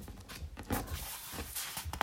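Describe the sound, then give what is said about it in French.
A sheet of paper is swapped, with soft crinkling and a few dry rustling bursts of paper handling, quiet, with no talking. “Hop, ça c'est le petit bruit du changement de feuille.”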